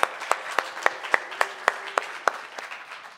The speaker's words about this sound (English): That was a phenomenal set, so round of applause for them.